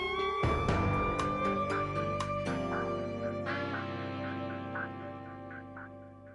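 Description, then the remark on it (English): Loud duck quacks over sustained electronic tones, punctuated by several sharp gunshot bursts as the ducks are shot in the first few seconds, then repeated softer quacks trailing off. No one speaks. “We're blasting ducks.”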